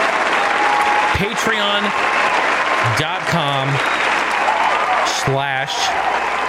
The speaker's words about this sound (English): Again, shout out to all these amazing people you see right here on your screen. Round of applause.